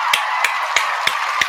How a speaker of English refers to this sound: So please get a round of applause together for Premier Cocktails.